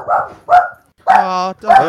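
Several sharp barks from dogs in quick succession, including a drawn-out, howling yelp in the middle, fairly loud.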